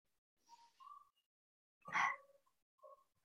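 A single sharp sneeze bursts out, loud and brief, with a few faint squeaky tones before and after it.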